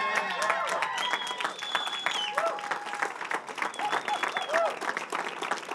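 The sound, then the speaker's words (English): A church audience stands and applauds steadily to welcome a special guest speaker, a dense wash of many hands clapping, with high whistles and scattered cheering voices rising over it throughout. “So if you know her and love her, I want you to stand to your feet and give a round of applause to the one and only”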